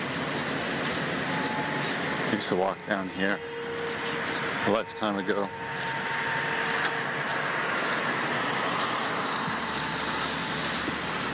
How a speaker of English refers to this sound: It's been raining. The streets are louder than on the days when it hasn't been raining.